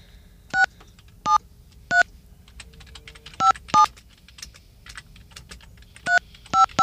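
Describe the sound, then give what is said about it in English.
Touch-tone keypad beeps as a phone number is dialed on a new phone: about nine short, clear tones in uneven bursts, moderately loud, with faint soft clicking between them and no talking. “Let's make a phone call.”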